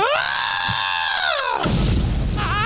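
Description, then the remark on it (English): A voice does a loud, brassy elephant-trumpet impression: a sustained, high, blaring cry lasting over a second, then breaking into a rough, noisy burst and a brief wavering tail. “And what's the noise they make again?”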